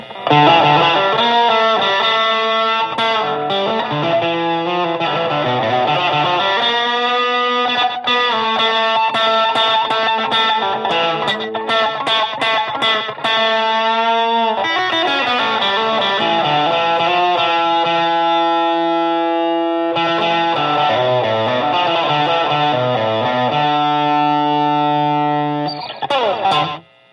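Distorted electric guitar played through a plexi-style overdrive with both tone controls wide open, bright and harmonically rich, sustained chords and riffs ringing loudly with no talking.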